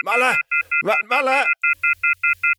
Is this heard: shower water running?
no